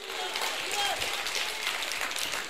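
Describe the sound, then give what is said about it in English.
A church audience claps for the Lord together in a dense, steady burst of applause that keeps going without pause, with scattered voices calling out underneath the clapping. “A great clap? Really?”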